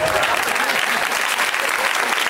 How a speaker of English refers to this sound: It feels good to clap all together. It feels nice, even if there's not a punchline.